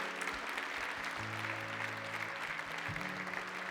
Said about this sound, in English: Give the Lord a big hand clap this morning. Come on. Thank you.